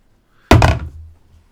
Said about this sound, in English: Try and attempt talking to Lyle. Knock on his door.